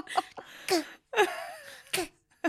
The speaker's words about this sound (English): Baby cough.